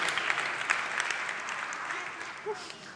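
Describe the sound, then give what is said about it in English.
An audience claps steadily for about three seconds for people who got four or more quiz answers right, a dense crackle of many hands at moderate volume that gradually thins toward the end, with a faint voice briefly sounding near the close. “So let's give those people a really big round of applause.”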